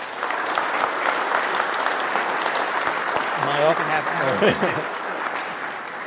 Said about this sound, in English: round of applause.